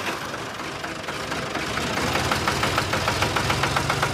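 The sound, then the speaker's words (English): A tractor's diesel engine idles and knocks steadily as the tractor backs up, with rhythmic mechanical clatter growing slightly louder partway through, with no voices. “He's backing up the tractor.”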